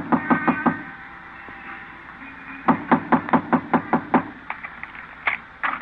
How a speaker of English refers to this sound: It's locked. I can hear them moving around. Knock on the door.